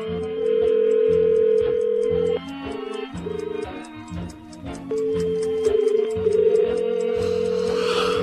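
telephone ringing tone

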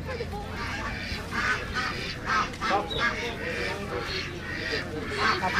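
african geese honking

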